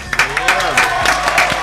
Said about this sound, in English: Can we clap out at one time, man